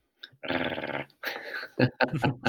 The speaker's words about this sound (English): A long overdue growl, but a growl nonetheless, it would seem.